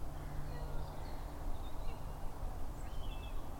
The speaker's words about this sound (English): It's a keening of a buzzard over the trees behind us.